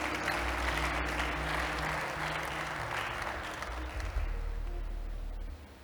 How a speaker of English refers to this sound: Give a big clap offering to Jesus.